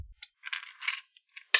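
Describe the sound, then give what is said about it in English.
Several dice clatter and rattle onto a table in quick bursts, a scattered tumbling spill with a final louder clack, with no talking. “Oops, let me just drop all my dice first.”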